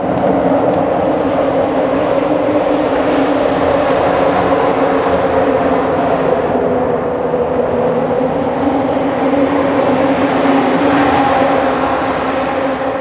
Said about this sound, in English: Calm when it's just the water, and chaotic when the cars pass by the bridge.